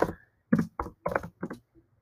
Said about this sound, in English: Let me, like, look this up, actually. Enjoy my typing noises, I guess, if the mic picks them up.